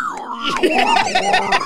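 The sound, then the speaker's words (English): A person in a studio imitates a pig squeal: a high, strained vocal squeal with rapid wavering, loud and continuous for under two seconds, with no words spoken. “That was a pig noise.”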